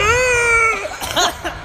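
A single drawn-out vocal yawn, a steady high-pitched whining tone that dips and trails off into breathy, uneven exhaling.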